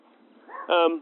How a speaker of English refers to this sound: It's just a little doggy. He's tiny. Hi, doggy.